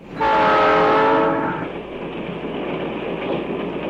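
A train horn blares loudly for about a second and a half, then cuts off, leaving the steady, broad rumble of the train rolling along the rails.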